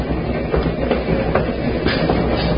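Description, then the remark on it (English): Steady rumble of a moving train with rhythmic clacking of wheels over rail joints, a few sharp clicks recurring every half second or so, continuous with no voices. “The wheels of the train must have been listening to what that woman said, because they repeated it.”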